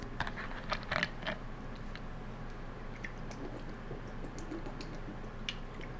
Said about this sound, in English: You know what? Let me get some more water in me.